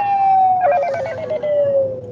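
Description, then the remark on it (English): A phone ringtone taken from a movie plays: a steady electronic tone that slowly sinks in pitch, with a brief warbling, siren-like flutter layered over it in the middle. Clear, with no talking. “I paid 99 cents for that ringtone.”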